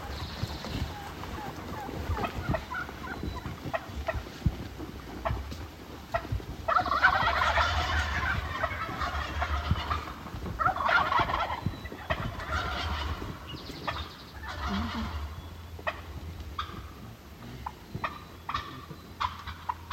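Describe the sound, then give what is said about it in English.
Several wild turkey toms gobble close by, right in front of a hunter, in repeated rattling bursts, loud and overlapping, with rustling movement and faint whispered voices underneath. “He says the toms are right in front of him.”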